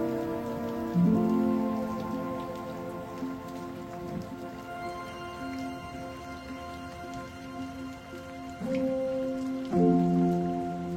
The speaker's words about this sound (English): Sheltering beneath a porch, we watch the rain pour down, though now the time has come to leave this dreamy moonlit town.